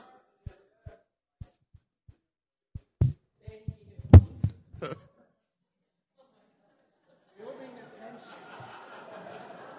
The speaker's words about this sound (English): Is that my heart beating? Am I nervous?